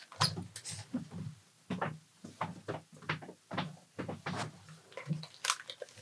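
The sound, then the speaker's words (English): A run of irregular knocks, scrapes and thumps as two people swap chairs at the Sydney Opera House, over several seconds with no talking. “Yeah, I think we should swap chairs, don't you? You want to swap chairs,”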